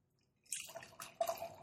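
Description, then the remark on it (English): After a moment of quiet, a 4.7% dry Irish stout pours from a very full can: a steady splashing gurgle with fizzy, bubbly texture that continues to the end without any talking. “Once again, their cans are very full. My thumb went in.”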